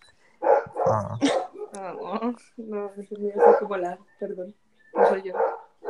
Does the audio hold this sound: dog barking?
yes